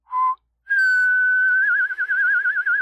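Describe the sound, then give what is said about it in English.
A person whistles a short note, pauses briefly, then holds a long higher whistle that breaks into a quick wavering trill, imitating a horse's whinny. Clear, no talking. “All right, fine, but the whistling horse stays.”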